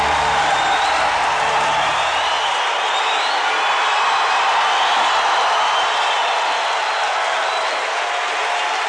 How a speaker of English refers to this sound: We're at the show. Yes. Let's do this. Listen to that crowd.